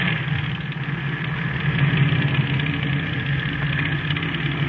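An airplane engine idles with a steady, droning rumble, a low hum layered under a broad whooshing hiss, holding constant and fairly loud for the whole stretch with no voices.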